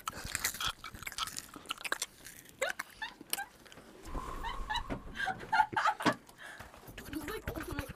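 Crisp crunching as something crunchy is bitten and chewed, a rapid series of loud crackly bites and chomps, with faint voices murmuring briefly in the background.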